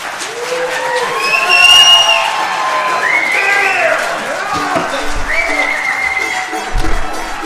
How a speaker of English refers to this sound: You mean we like an encore? We thought we'd get more applause than that, but that's all right.